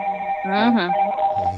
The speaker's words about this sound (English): Somebody got a phone going off, man.